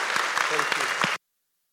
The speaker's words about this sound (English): So can we give a cheer